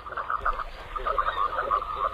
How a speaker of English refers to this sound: It's our mystery bird. It's a sleek diving duck. The folks at Cornell Lab describe it as a streamlined duck that floats gracefully down small rivers or seen on shallow shorelines. The male has a white body and a dark green head